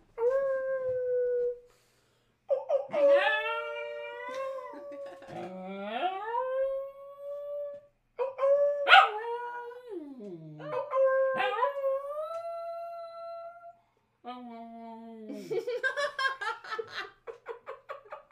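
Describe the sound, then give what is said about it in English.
A dog howls in a series of long, wavering, pitch-sliding calls with short pauses between them, fairly loud, ending in a higher, more broken yowl. “He did the little howl.”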